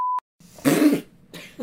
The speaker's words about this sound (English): I'll beep it. I'm gonna leave it. I'm just gonna beep it.